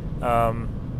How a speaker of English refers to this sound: I am driving. It is very, very windy outside, so I apologize if things are extra loud in the background. I mean, they're always a little loud in the background, but if it's extra loud, it's because it's kind of windy.